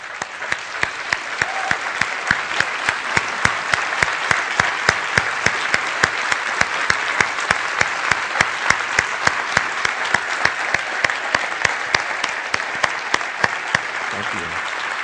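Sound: audience round of applause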